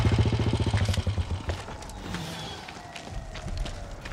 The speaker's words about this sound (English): Oh, I love how it's like action, action, action. And then you hear that. And Bruce comes in on a moped. On his little bump, yep.